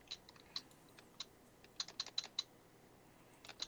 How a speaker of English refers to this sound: You're just beating their keyboard like it owes them money. Well, I have something typed that I need to backspace over, and it won't let me.